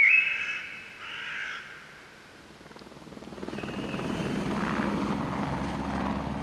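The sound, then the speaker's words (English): A helicopter's rotor chop swells into a steady, rhythmic thudding roar that holds loud toward the end, after a brief harsh bird call at the start. “A helicopter flies.”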